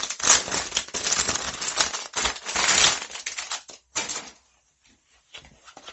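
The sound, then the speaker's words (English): Busy rustling and scraping of cardboard and packaging being torn open and handled to unpack an official Sega Sonic the Hedgehog 30th anniversary hoodie by Numskull, with dense crinkling bursts for about four seconds before trailing off into quieter, sparse rustles. “It is the official Sega Sonic the Hedgehog 30th anniversary hoodie. So we'll whack into this.”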